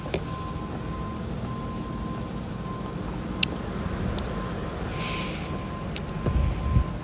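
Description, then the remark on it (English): A loud truck rumbles past with a deep, steady engine drone that fills the whole stretch, with a faint whine above the roar and no talking. “I'm sorry, there's a truck and it's super loud.”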